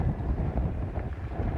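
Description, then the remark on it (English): Steady, buffeting wind roars across a microphone on a sailing boat out on open water off Arklow, Ireland, in bad weather, a constant low rumble with gusty fluctuations. No voices are heard. “the delivery trip up from Plymouth and savour our first bit of bad Irish weather off Arklow.”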